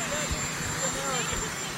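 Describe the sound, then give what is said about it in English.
Loud, steady helicopter engine roar with low rotor thumping pulses, close by and constant, while a man standing right next to the helicopter is asked questions; the voices are faint underneath and partly drowned by the machine. “I'm gonna speak over him because he's right next to a helicopter when they're asking him this question, and it's tough to hear the question.”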